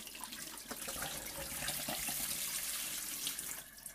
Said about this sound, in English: Just straight down the sink, that's just water.